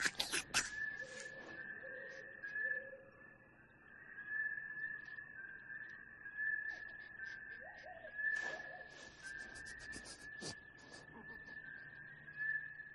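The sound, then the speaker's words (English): A strange, warbling bird-like film sound effect, heard the moment right before a stormtrooper hits, holds a steady high whistling pitch for the whole stretch, pulsing in and out, with sharp crackling bursts near the start and a few more later on. “But then the moment right before the stormtrooper hits, you know, and you have that weird bird sound.”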